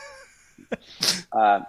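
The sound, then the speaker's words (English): A single sneeze: a sharp inhale catch followed by a loud, breathy burst, trailing into a brief voiced sound right after. “And I get to hang out here and bless you, face jizz.”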